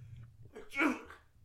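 A single sneeze bursts out, a sharp breathy blast lasting under half a second, with a faint low hum in the background before and after.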